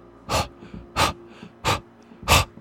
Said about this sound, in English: A wet, rapid breathing. Waiting for me at the door to City Hall. What she had been fleeing from. The beagle puppy. Padded forwards. He was adorable.